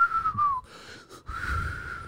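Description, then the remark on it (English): A weak, breathy whistle attempt: a thin tone slides slightly downward, breaks off into airy hiss, then returns as a steadier, breathy pitch, fairly quiet with no talking. “Damn, if only I knew how to really whistle.”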